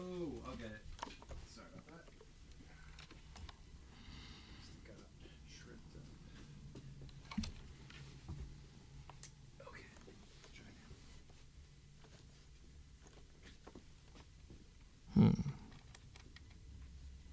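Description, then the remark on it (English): Quiet, scattered clicks of buttons being pressed on an electronic keyboard as someone tries to turn it on, sparse, with one louder thump near the end and a faint low hum underneath. “Can I get the keyboard going? Is it on? I think maybe the power strip is off.”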